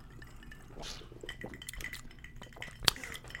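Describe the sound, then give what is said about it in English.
One bright, sharp clink of glasses touching in a toast with Old Fashioned number 209 drinks, standing out near the end above a low murmur of background noise and faint tableware clatter. “is it time for toasting? Oh, it's time. The drink has been placed right in front of you.”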